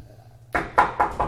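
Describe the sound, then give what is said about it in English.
Four firm knocks on the door of a shuttle in a quick, even rhythm, fairly loud, following a brief moment of quiet background hum. “Somebody knocks on the... Someone knocks on the door of the shuttle.”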